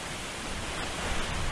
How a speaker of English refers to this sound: I just got hammered with rain again.